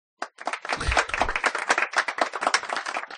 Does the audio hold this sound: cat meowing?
no